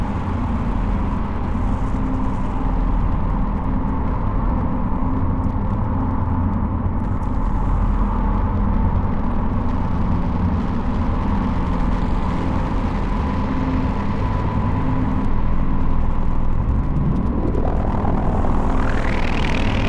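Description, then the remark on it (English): A thick, steady modular synth drone, a Morphogene sound run through a Mimeophone and a Desmodus, washed in delay and reverb, droning loudly and continuously with no voices, then a rising pitch sweep climbs upward in the final seconds. “So this is just our Morphogene sound again, but running through the Mimeophone and Desmodus now.”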